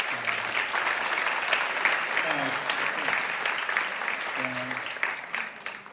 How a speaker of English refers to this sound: I don't speak, I have to learn to speak more in that politician shit where you signal the applause. Like you end on the up note, and everybody knows to give you the bullshit clap.